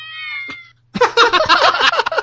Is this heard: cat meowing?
yes